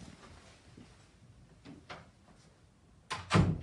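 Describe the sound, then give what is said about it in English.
Faint hum, then near the end a door is pushed shut during a live TV broadcast: a quick latch click followed at once by a solid, fairly loud thud. “Maybe close that door.”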